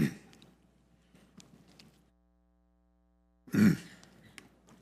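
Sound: throat clearing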